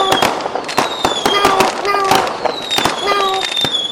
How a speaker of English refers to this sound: I had a sound effect I used that were like these whistling, crackling fireworks going off. And every time those would go off, it would totally freak her out.